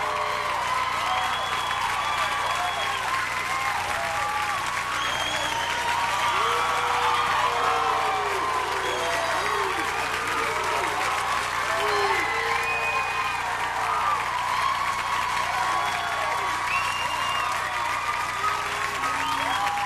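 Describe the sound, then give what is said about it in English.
A large audience applauds and cheers continuously as a musician is introduced on stage, a dense, steady roar of clapping mixed with whoops and shouts that stays loud and unbroken throughout. “Ladies and gentlemen, come on. Give it up for the man,”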